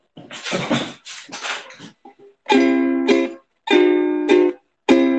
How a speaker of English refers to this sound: I hope my cat Norbert doesn't stop meowing when I start doing this. I'll let you out in a minute, bud.